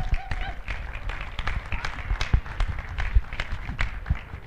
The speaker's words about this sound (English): Let's give our superheroes a big round of applause.